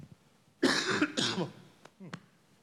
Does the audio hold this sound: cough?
yes